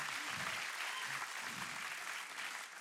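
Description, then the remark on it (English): A crowd applauds steadily, a dense, even wash of many hands clapping that holds at a fairly constant level for about three seconds, with faint low voices murmuring underneath. The crowd claps when prompted, after a spoken confession, "I am going to believe God." “Yeah, put your hands together. That's a clap-worthy moment.”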